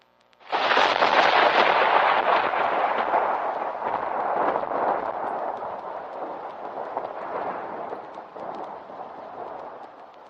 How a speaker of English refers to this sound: While Rachel was waltzing with her father, she heard a clap of thunder.